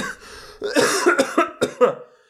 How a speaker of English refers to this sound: smoker's cough.